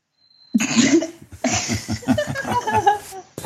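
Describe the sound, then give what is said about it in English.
Loud hiccups tangled with laughter: a sharp voiced gulp, a brief pause, then a longer run of jerky, breathy hiccuping bursts. “Where did this hiccups come from?”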